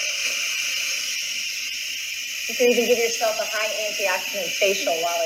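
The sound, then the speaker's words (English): A pressure cooker vents steam in a steady, loud hiss that runs throughout without letting up as its pressure is released so the lid can be opened; partway through, someone starts talking over the continuous rushing sound. “And the way that you are able to open it is by releasing the pressure and releasing all of the steam.”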